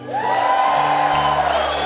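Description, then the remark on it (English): An audience lets out a big, loud cheer on a count of three, a sustained wash of whooping and shouting voices that holds steady for about two seconds. “can we try like a big cheer here on the count of three?”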